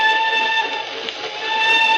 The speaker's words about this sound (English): I say, the old whistle do sound eerie tonight, don't she? Yes. I always says there's nothing so lonely as a train whistle going along across country after everyone else is safe in bed.